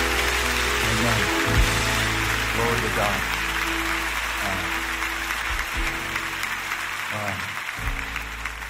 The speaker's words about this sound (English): We declare this done in the mighty name of Jesus, and we clap our hands.